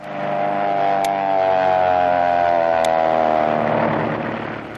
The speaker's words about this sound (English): Say, fellas, you all know what that is, an airplane making a power dive.